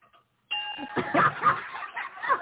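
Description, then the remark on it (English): The Liberty Bell is struck once, its loud metallic clang ringing on with bright sustained overtones amid some busy background noise. “Hit that Liberty Bell.”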